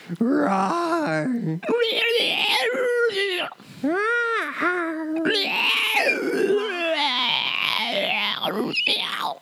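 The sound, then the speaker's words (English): Voices imitate the alien creature sounds from the movie Feeders, a run of wailing, moaning and warbling vocal cries with sliding pitch, some shrill and raspy, continuing loudly for several seconds with brief pauses. “We're going to quote the alien sounds.”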